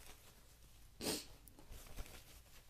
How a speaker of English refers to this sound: Oh, here comes the stupid sniffles. Thank God I came prepared. Ah, sorry. I'm sorry you have to hear this.